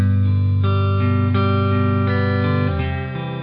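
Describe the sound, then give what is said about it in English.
An electric guitar rings out bright, clean 60s-style sustained chords, changing every half second or so in a steady progression, with no voices. “just clean 60s tones, and then you can really get that, and it really gives you everything you're wanting out of it.”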